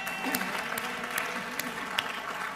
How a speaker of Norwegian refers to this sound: Gi dem en skikkelig klapp, da.